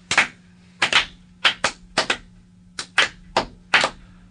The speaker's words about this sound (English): it's four mechanical hands. And it's not automatic. That's the other thing. I have to crank it every single time that we do this.